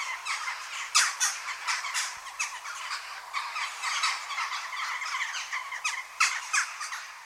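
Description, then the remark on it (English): Jackdaws chatter in a busy flock, their short, harsh 'jack' calls overlapping constantly at moderate loudness, with a few sharper calls standing out; no voices. “I was always taught that the crow family were known as daws, and the jackdaw was the one that went jack jack.”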